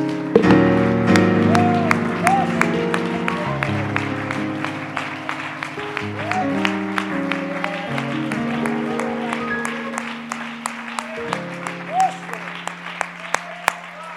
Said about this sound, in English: Come on, let's all clap our hands unto the Lord.